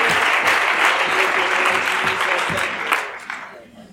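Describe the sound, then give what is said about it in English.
A seated church audience claps together in a dense, steady wash of applause that holds loud for a few seconds, then thins and fades toward the end. “Would you clap your hands as you're seated?”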